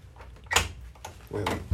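A door is locked and tested: the latch clacks and rattles with a couple of sharp metallic clicks and a handle jiggle, ending in a low thump, with no one speaking.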